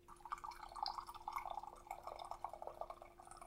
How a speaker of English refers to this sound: is pouring some tea. It's tea time. It's tea corner.